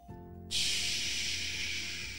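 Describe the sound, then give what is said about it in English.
A voice imitates pouring rain with one long, steady, breathy hiss that starts after a short pause and holds evenly for nearly two seconds over a faint low hum. “Can you make the sound of rain?”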